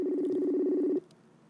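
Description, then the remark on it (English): A steady electronic phone tone, like a line being dialed, holds clearly for about a second and then cuts off, leaving only faint background noise. No one speaks. “I was going to give him a call and fuck it. I'll just give him a call.”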